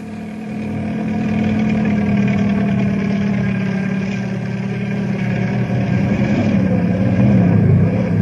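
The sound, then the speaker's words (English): A helicopter's engine and rotor drone steadily for several seconds as it is forced down to land on a canyon floor on the momentum of the rotor: a loud low hum layered with a rapid, rhythmic flutter that swells slightly toward the end, with no voices. “I've got to land on the momentum of the rotor while I still have a chance, or I'll crack up.”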